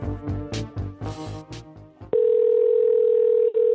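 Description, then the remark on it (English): A steady, loud telephone dial tone drones for nearly two seconds while calling a cell phone, with a brief hiccup near the end, following a busy stretch of rich, shifting tones. “That included calling three cell phones.”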